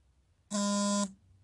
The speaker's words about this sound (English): My bad, y'all. I apologize for that slight interruption. I had to go ahead and put my phone on silent. I didn't want to hear all that damn vibrations. Them is not the vibrations I want to hear while I'm recording my podcast.